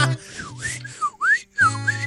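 A person whistles a short tune, the pitch sliding and swooping through a few connected phrases, with a brief pause before the final notes and a low background hum.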